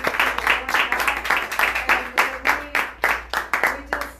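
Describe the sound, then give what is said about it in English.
An audience claps together in a steady, even rhythm, sharp bursts repeating a few times per second, with voices faintly sounding underneath. “How many can give a clap?”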